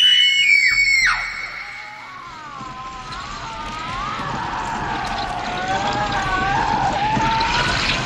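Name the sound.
screaming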